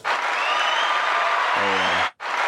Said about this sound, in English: Applause.